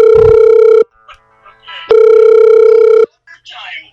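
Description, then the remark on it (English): A phone rings loudly with two steady electronic tone bursts, each about a second long, separated by a short pause filled with faint murmuring voices. “Oh, who's ringing? That's me.”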